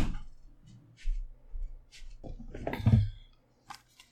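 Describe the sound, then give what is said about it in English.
A door is opened and closed to let a cat out: soft clicks and low thuds, then a louder bump and latch rattle near the middle, followed by quiet with a faint click or two. “That bitch totally stomped in the doorway with her tail still in the door jam.”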